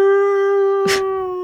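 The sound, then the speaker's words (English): A drunken voice imitates a fire engine siren to entertain a crowd of onlookers on Aldgate High Street, holding one steady, loud wailing tone for over a second, broken briefly near the end by a short burst of breathy noise. “It seems that she had been entertaining a crowd of onlookers with a drunken imitation of a fire engine.”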